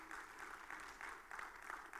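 A crowd claps in a steady, dense round of applause, a crackling wash of many hands that holds at an even, fairly loud level for the full two seconds with no voices standing out.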